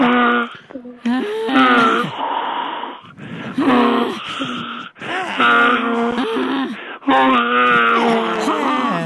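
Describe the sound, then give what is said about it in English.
A voice imitates exaggerated moaning that turns into donkey-like braying, with loud, drawn-out wavering cries in several bursts and brief gasping breaks between them. “It's almost a donkey.”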